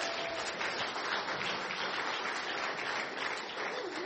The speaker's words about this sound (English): Let's give our helpers a round of applause, everybody.